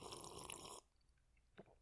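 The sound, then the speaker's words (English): A loud slurping sip of whiskey from a red plastic Solo cup lasting under a second, followed by quiet and a faint swallow or cup tap. No one speaks. “So here is a sip to Solo.”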